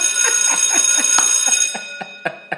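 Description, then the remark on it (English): A bell rings in a rapid, steady clatter of bright metallic strikes, then slows to a few separate dings before stopping. No one speaks. “Let me ring the bell.”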